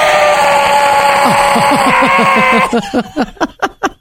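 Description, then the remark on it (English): A voice mimics a malfunctioning clothes dryer: a strained, buzzy drone with rapid low thumping pulses, then a run of choppy, rhythmic bursts that sputter to a stop. “My dryer is making this sound like.”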